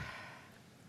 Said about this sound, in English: So would you just, you know, hold your breath for a second? And then exhale.